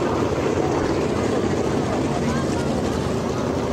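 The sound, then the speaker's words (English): Race car engines roar continuously and loudly, a dense, steady mechanical drone with little variation, as the cars go by a driver. “This is the cars going by the driver.”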